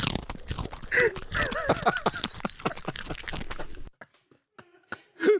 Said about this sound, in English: do you think this is the sound of my dog eating a carrot, or is it me? Is that a dog eating a carrot, or is it me?